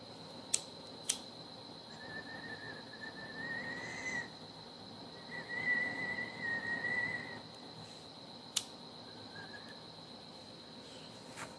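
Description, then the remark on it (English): Two long, faint, wavering train horn blasts sound one after the other as a train blows its horn through town around 1 a.m., over a steady high cricket drone, with a few sharp clicks scattered through. “And now all of a sudden, it turns 1 o'clock in the morning and the fucking train has to blow its horn through town.”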